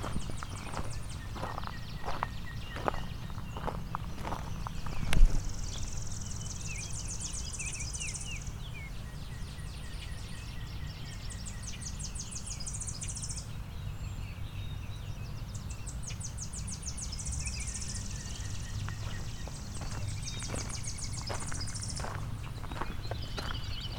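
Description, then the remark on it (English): Chipping sparrows sing dry, rapid, high trills, each lasting a few seconds, repeating over a steady low outdoor rumble with scattered clicks and taps. “A lot of chipping sparrows here.”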